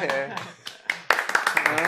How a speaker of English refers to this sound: I'm going to nudge the others to disperse slightly and then we're going to start some applause.